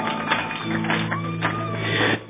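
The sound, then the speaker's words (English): An audience claps together as a clap offering to celebrate God, a steady, dense wash of applause, with sustained low keyboard or organ tones droning underneath. The clapping holds fairly even before dropping off sharply at the end. “Celebrate God with a clap offering right now.”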